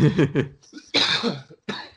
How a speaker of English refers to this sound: See, now I can't pull away to cough anymore. I'm going to have to edit this shit out.